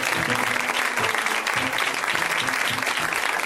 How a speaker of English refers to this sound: you are going to clap for him right now.